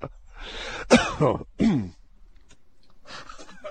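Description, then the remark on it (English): A fairly loud cough from someone who is sick, in two or three harsh bursts over about a second, rough and throaty, followed by quiet breathing and faint rustling. No one speaks. “Sorry, I had to cough there.”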